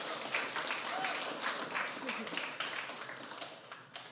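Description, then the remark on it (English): Sustained applause from a crowd for people who served as a speaker's curtains. It is a dense wash of many hands clapping at once, steady and fairly loud for about four seconds, with scattered sharper claps poking through. “So, all right, guys, thank you so much for being my, let's give them a round of applause for being my curtains.”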